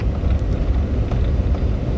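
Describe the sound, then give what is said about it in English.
Steady low rumble and airy hiss fill the inside of a truck cab as the heater blows on a cold day, a constant drone with no voices or distinct events. “I'm very thankful to be in my truck because it is warm. This heater is a pretty good heater.”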